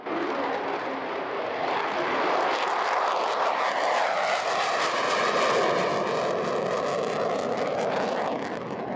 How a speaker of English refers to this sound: When an F-35B Lightning jet takes off, you know about it. And there was not just one, but four that left RAF Marham in Norfolk this week. Headed for the North Sea and the deck of HMS Queen Elizabeth.